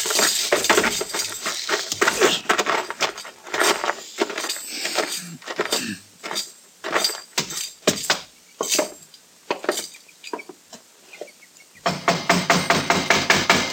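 Loud banging on the wooden door of a house, a long run of heavy irregular thuds and raps with brief pauses, pounding on with no voices.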